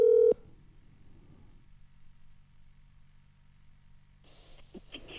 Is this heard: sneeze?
no